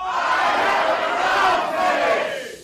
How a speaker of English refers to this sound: Again, on the count of three, everybody scream, I have a clown fetish. 1, 2, 3.